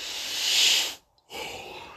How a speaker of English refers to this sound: I had to yawn. I'm very sorry.